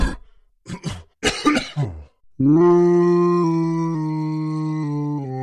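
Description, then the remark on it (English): Loud, harsh coughing up as Saffrite coughs up Voltronic Zoo: three or four rough hacking bursts, followed by a long, strained, droning groan that holds steady for about three seconds. “Saffrite had coughed up Voltronic Zoo.”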